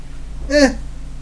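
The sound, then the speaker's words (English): A single short cat meow, rising and falling in pitch, against a faint steady background hum with no one talking. “Our cat stalling us to end the show.”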